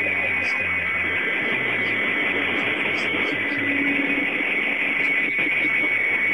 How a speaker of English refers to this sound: I guess that's what traffic sounds like through the Real Audio stream, through the traffic.